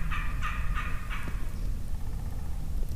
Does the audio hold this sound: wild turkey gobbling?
yes